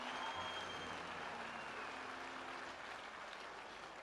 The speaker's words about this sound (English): Clap your hands for Jesus Christ, somebody.